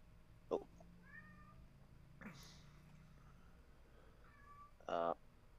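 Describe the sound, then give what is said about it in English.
A kitten meows in short, high-pitched bursts, a couple of brief cries with quiet gaps between them, set against faint background noise with a voice murmuring low in the background. “I can hear you, kitten.”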